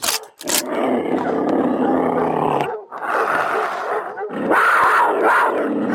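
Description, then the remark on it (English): A large male lion up in a tree roars loudly in three long, rumbling bursts with brief pauses between them. No one speaks. “Brother, you are sure asking for a whooping from that lion.”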